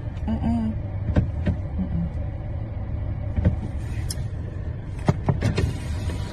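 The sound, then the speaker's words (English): Car door locks clunk shut several times in short bursts as a woman locks the car on a man getting out to go around to the passenger side at a Cheesecake Factory; sharp mechanical clicks over a steady low rumble from inside the vehicle, with faint muffled voices in the background. “she has locked the car on him as he gets out to go around the passenger side.”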